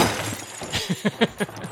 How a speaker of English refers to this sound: Yeah, like a nice car crash.